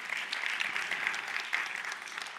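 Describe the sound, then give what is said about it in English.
A church audience claps steadily together during a Palm Sunday sermon, a dense, even patter of many hands filling the moment with no voices over it. “You can clap, it's true.”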